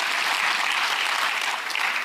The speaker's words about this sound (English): Come on, somebody give the Lord a hand clap, a shout, and an amen.